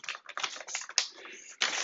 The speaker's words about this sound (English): You know, listen, I had to tear up the piece of paper because clearly I got too many distractions.